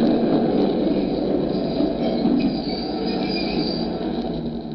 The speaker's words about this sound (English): The last train was just pulling in.